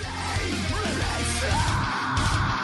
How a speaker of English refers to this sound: They passed the test. They screamed in there for no reason, so thumbs up.